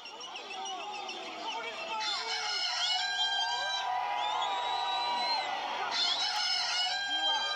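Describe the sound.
A loud, drawn-out rooster crow voiced by a person, a tradition since 1948 just before the starting gun of a race, rings out twice over the steady murmur and chatter of a large outdoor crowd of runners.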